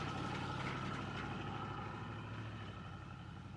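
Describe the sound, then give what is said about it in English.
A Chevrolet Impala's engine idles steadily, a continuous low rumble with a faint rhythmic throb, no voices, holding at an even loudness for a few seconds. “Driver picks the music, shotgun shuts his cake hole, and the ones in the back enjoy the ride, idling in the Impala.”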